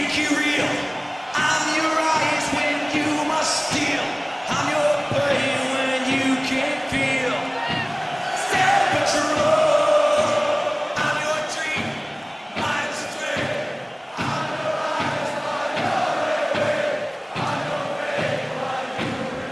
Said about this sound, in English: He talks about how it's better to sing it together, and they kind of sing. He sings the chorus a cappella with the crowd.